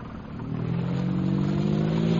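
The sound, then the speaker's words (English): Bomber aircraft engines rev up as the bombers go up, droning and building steadily, a low, heavy rumble with rising intensity that holds loud and continuous throughout, with no voices present. “There go the bombers, sir.”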